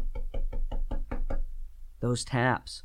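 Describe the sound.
Seven quick, evenly spaced knocks on a boat hull, hollow, tapping in a steady rhythm before stopping; a brief spoken voice follows after a short pause.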